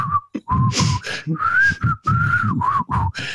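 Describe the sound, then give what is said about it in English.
A person whistles a song's well-known melody, clear notes rising and falling in a steady melodic line, with short breaks between phrases and some soft background noise underneath. “Hey, how about the part that everyone knows? Oh, the whistle?”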